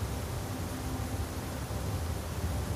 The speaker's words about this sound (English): Boy, this thunderstorm is getting pretty wild. Oh, it's getting pretty windy.